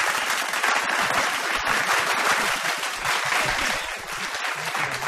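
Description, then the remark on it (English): A steady burst of recorded applause played as a fake round of applause for a man taking a seat, dense clapping from a crowd that stays loud and even for about five seconds with no voices over it. “give him a fake round of applause.”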